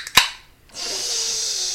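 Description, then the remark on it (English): A sharp metallic snap of the tab popping on a can of Truly, then a brief pause and a steady, bright fizzing hiss that carries on to the end, with a faint low whistle sliding down underneath. “I'm about to open a can of Truly, so you're about to hear a hiss.”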